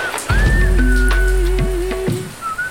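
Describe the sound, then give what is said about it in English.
Steady rain patters on a tin roof in a backyard, with a deep low rumble and a thin sustained whistling tone riding over the dense, continuous drumming. No one speaks. “It's just rain on the tin roof.”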